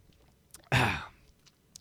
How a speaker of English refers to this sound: Cheers. I can do that. I can cheers with my Heartland College sports koozie and my drink here, which I need a sip of right now because it's been a wild day.